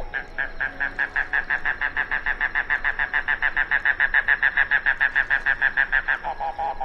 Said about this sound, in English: That didn't make it a yellow-billed cuckoo. It made it today's featured feathered friend, Coccyzus minor, the mangrove cuckoo.